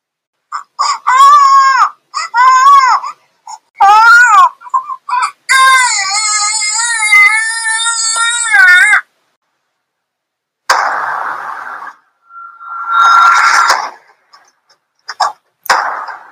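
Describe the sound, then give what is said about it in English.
The newborn baby girl beside Devaki in a prison gives a loud, shrieking cry: several short, high wailing bursts, then one long sustained wail, followed by a stretch of hissy noise and a brief whistling tone. “And then immediately, there was a loud, shrieking cry.”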